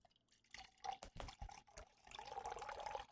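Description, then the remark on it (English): Water pours into a glass, with a few splashy drips and sputters at first, then a steady filling sound whose pitch rises as the glass fills. “Did you guys miss that water pour?”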